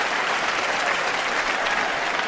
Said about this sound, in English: Yeah. He's getting claps though. Hey.